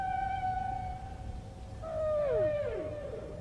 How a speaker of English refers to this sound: So this is where they realize that it's humpback whale song. And they point out that humpback whales were hunted to extinction in the late 20th century.